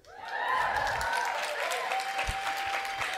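A crowd at a live show claps steadily and loudly for about three seconds, the dense applause swelling quickly and holding. A thin, sustained whistle-like tone rides above the clapping.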